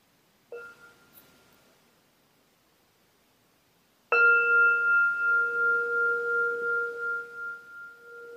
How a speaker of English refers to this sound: I'm going to pause here and invite us to take a moment in silence and then listen to the sound of the bell together.